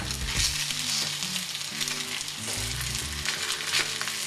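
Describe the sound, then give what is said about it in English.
Steady sizzling of schnitzel frying in a hot pan with a little oil, a dense crackling hiss that runs continuously, with faint low clinks or stirring underneath and no one speaking. “And hear it sizzle?”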